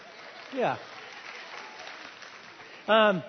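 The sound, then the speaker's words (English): A church audience applauds in a steady, even wash of clapping, punctuated by two brief vocal calls, one early and a louder one near the end. “In fact, go ahead and cue the applause.”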